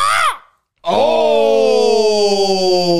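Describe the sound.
A person imitates a crow's cry, like the one heard before NXT wrestler John Crow comes out, with a short, falling squawk, then after a brief pause a long, strained caw that slowly slides downward in pitch and stays loud throughout.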